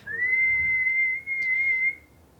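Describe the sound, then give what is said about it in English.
A person whistles one long, steady high note that rises slightly at the start and holds for about two seconds, imitating their whistling teapot, with no talking. “So that's your teapot.”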